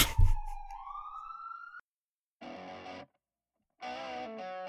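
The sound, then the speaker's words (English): An ambulance carrying a heart attack victim passes by, its siren wailing with a rising, sliding pitch, cutting off, then returning in two harsh, buzzy bursts separated by short silences. No voices are heard. “We're going to have to retake this anyway until this Stupid ambulance with its stupid heart attack victim passes by.”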